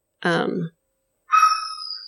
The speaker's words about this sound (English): There's my dog.